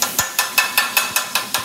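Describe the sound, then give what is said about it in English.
A spatula chops steak and onions for a cheesesteak on a flat grill in the back of a restaurant: about nine quick, evenly spaced metallic clacks, sharp, with no one talking. “Yeah, I'm just chopping the steak on the grill right now.”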